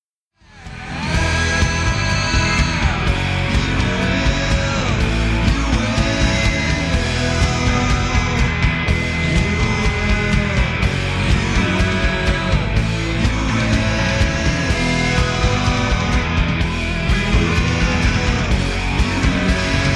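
A grunge rock song plays loud and steady after a brief quiet start, with thick distorted guitar, pounding drums and a male voice singing throughout.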